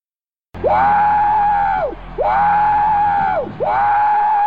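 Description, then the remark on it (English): A voice imitates a train whistle with three long, loud, steady hoots, each swooping up at the start and sliding down at the end, repeated back to back without any talking. “You sound like a big choo-choo train.”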